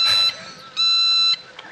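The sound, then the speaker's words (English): Two loud electronic bursts from a movie character's pager ringtone, each a stack of steady high-pitched tones; the first short and shrill, the second longer after a brief pause, with no talking. “Oh, world's most annoying ringtone. This is his phone.”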